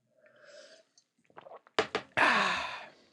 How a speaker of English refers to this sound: Sip of coffee. Calibrate the caffeine.